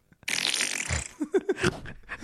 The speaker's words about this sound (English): This one's called Day Old Pizza Fart.